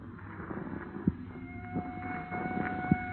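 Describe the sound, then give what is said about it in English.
Faint police sirens out in the country hold steady high tones over a low, rumbling background with a few soft thumps, growing slightly louder toward the end. “What is there about police drivers? Even out in the country, they got to lay on those sirens.”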